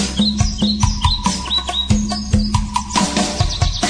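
Birds chirp in quick, repeated high tweets, fairly loud, over a low, steady hum. The brief rising calls come several times a second with no talking.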